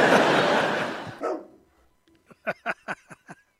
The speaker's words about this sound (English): Oh, it's a freaking dog in this room.